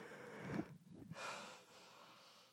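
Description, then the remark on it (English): A drawn-out yawn: a low, voiced stretch followed by a long, breathy exhale that trails off softly, with no talking. “Sorry for the yawning.”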